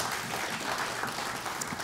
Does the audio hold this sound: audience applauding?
yes